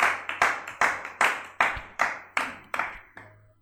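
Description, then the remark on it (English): An audience claps in unison, a steady rhythmic beat of about nine sharp claps, each ringing out briefly before the next, with no voices over it. “You guys don't understand, that's not clap.”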